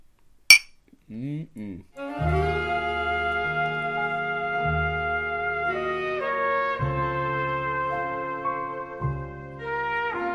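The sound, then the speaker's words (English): A single bright clink of glasses in a toast rings out sharply near the start, followed by a brief murmur of voices before sustained, melodic music with singing takes over. “First, a cheers.”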